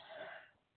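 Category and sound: human body sound, sneeze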